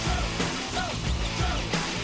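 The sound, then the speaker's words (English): Several voices shout over a loud, dense live rock recording, their yells rising briefly through the wash of music with no clear words. “What are they yelling? Go. Or I jump?”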